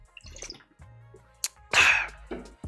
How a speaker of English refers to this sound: Let me take a swig of this water.